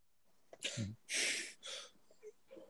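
Heavy, noisy breathing close to the mic: three forceful, airy huffs in quick succession, with one sounding strained and wheezy, then quieter small breaths trailing off.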